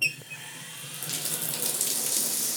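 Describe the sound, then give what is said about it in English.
Hot water pours steadily from a tap into a sink and down the drain, a continuous hissing splash that builds slightly after a brief start, with no voices. “Anything in your house that uses hot water literally sends energy down the drain.”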